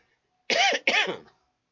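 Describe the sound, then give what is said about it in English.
Two harsh coughs in quick succession, loud and raspy with a brief gap between them, then silence. “I had this cough for 2 years.”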